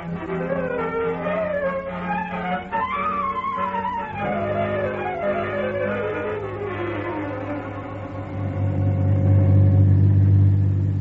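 A car engine revs up and down with rising and falling pitch as the vehicle drives off, then settles into a steady, louder low rumble near the end.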